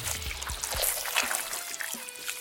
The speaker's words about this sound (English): as Absentia pulls the knife out, blood comes pouring with it